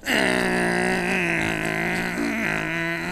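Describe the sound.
A person's voice imitates the engine of a high-powered car, like the cars heard at Silverstone. It is a loud, steady, buzzing drone held for about three seconds, the pitch wavering and briefly bumping up near the end, with no words.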